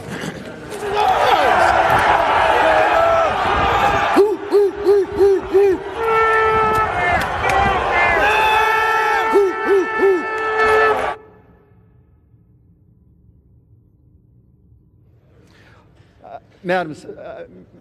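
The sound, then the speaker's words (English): A dense crowd of protesters shouts and chants loudly inside a legislative House chamber in Arizona for about ten seconds, with rhythmic yells rising above the din, then cuts to near quiet with a brief voice at the end. “Protesters are in the building.”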